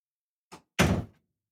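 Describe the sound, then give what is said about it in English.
A door is pushed shut: a light tap followed a moment later by a heavier, solid thud as it closes, with no other sounds around it. “You didn't close the door all the way.”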